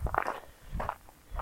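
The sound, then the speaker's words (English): Three crunching footsteps on a gritty path during a sunny morning walk with a view of the Pacific Ocean, at a steady, unhurried walking pace, each step a short, rough scrunch, fairly quiet and with no voices. “Perhaps you can hear the crunch of the path.”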